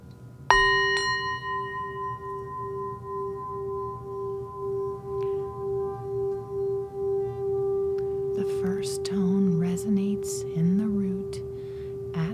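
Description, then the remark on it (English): Seven singing bowls struck together ring out in a single shimmering chord, their layered tones sustaining and pulsing gently as they slowly fade, with a voice beginning to speak softly near the end. “So the first we're going to do is just gently play all seven tones together and focus on our breathing in and out.”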